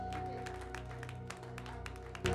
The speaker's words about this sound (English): Clap for the Lord Jesus. Hallelujah.